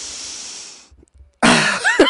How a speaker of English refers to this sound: But you're smelling a mic right now that you've been breathing on for like 15 to 100 hours.